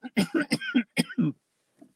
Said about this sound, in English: A little bit of a cough there. No, hopefully it's not that.